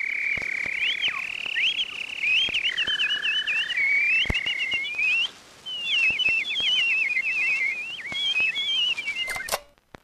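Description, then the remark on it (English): A steady, high whistling tone warbles and bends, breaking into rapid chirping trills, punctuated by sharp clicks and a brief gap before the chirps resume: a language of chirps and whistles used by data managers in the Entropian Highlands to communicate instructions. No one speaks. “They communicated instructions through a language of chirps and whistles, passing along a vast network of vibrating threads.”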